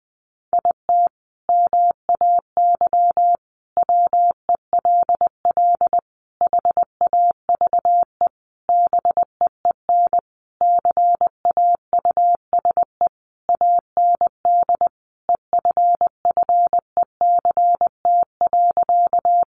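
Morse code sent at about 20 words per minute, spelling out sentences built from the top 1000 words: a single steady, mid-pitched beep keyed into rapid dots and dashes, grouped by brief pauses, with no voices throughout.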